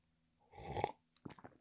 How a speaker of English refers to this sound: Sip of coffee.